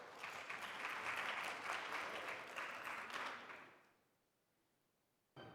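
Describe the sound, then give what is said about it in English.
An audience at a church service claps steadily for about four seconds for the day's preacher, the director of admissions at Pacific Lutheran Theological Seminary. A dense crackle of many hands fades out, followed by a brief silence and then a short burst of sound at the end. “A note of applause for good work done.”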